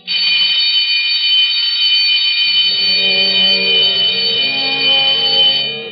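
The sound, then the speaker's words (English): A shrill electric closing-time bell in a public library rings loudly and without pause for about six seconds, with deeper sustained tones joining in halfway through. No one speaks. “When the time for closing bell rang in the public library”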